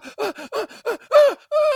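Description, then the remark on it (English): A woman's voice imitates exaggerated sexual moans, faking an orgasm: a quick run of about six breathy, rhythmic cries that climb in intensity, ending in a longer, louder sustained moan at a steady pitch. “How many women out there fake orgasms while your husband is screwing you? You go, oh, honey.”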